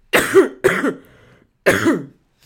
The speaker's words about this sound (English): Oh my god. Don't cough on the baby. Don't make me laugh, guys. Stop laughing. Because I hate that cough so much. Yeah, now it's like week 4,726 of this cough.